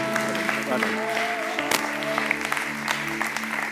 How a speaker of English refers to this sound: Thank you. Clap for Jesus, not for me. Come on.